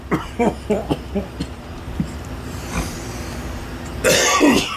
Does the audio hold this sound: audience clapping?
no